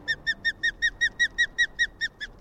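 An osprey calling: a rapid series of about a dozen sharp, high whistled calls repeats steadily, each a short clear chirp, with no talking.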